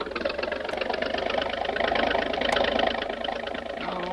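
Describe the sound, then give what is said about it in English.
A boat engine roars steadily, a rough, throbbing drone that swells a little louder partway through as it is revved to try to lift the bow out of the water and run the boat onto a beach, then settles back. No voices are heard. “by giving her the gun, the speed may lift the bow out of the water”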